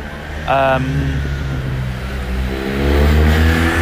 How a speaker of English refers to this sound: Like that motorbike's very bassy. You hear the lower frequencies as it's dropping.